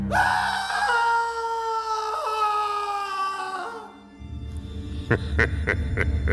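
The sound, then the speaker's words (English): A long, loud, sustained scream wavers for about four seconds, then breaks into a rapid series of short, sharp shrieking bursts with rough noise underneath, at night in a hotel in Linz, Austria, in 1952. “But for one of them, it is a grim and horrid moment. Cue scream.”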